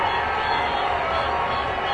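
A subdued crowd at an election night event, as results come in for the Donald Trump and Hillary Clinton presidential race, murmurs in a steady, unbroken wash of many overlapping voices, fairly loud but even, with no cheers or sharp outbursts over the two seconds.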